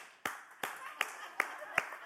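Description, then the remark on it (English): An audience claps to vote for a contestant, clapping in a steady unison rhythm, five sharp crisp claps about evenly spaced, over a continuous murmur of crowd noise and voices. “All right, if you think this man right here won, will you please give him a hand clap?”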